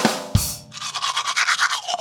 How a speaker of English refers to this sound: And the second, after you eat, is brushing the gunk off your teeth.